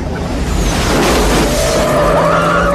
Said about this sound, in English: Cut to Melissa driving up to the scene, and Joe's truck falls out of the sky. On the road, right in front of Melissa.